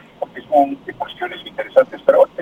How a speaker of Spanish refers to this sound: Bájale su radio, por favor, si es tan amable. Le baja a su radio, por favor. Hay interferencia.